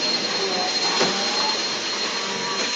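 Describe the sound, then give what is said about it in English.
A power tool whirs steadily and loudly the whole time, a continuous high, hissing drone with a faint tonal hum running through it and no pauses or change in speed. “Frank, turn off your power tool and come talk to the boys.”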